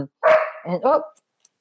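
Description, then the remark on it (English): A collie named Pearl barks loudly during a Zoom call, two drawn-out, whining barks in quick succession, followed by a couple of faint clicks. “She's a mad collie, and she gets all wound up when I'm on a Zoom call.”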